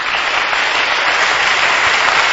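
A crowd claps steadily and loudly for Jesus, a dense wash of many hands with no individual claps standing out, filling the whole moment without any voices.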